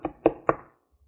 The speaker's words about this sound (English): He gets up, he's tired, it's been a busy day with all the travelers going through Bethlehem for the census, and he hears the knock, and the innkeeper gets up. Who can be bothering me at this time?